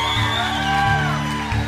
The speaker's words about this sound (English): Big round of applause for everyone who was baptized today. Big round of applause for Jesus who makes it possible.